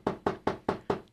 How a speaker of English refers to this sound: Okay, let me just knock on the door over here.